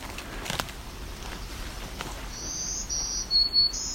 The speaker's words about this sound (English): Our higher pitch one, I think that's American Red Start. Buzzy one.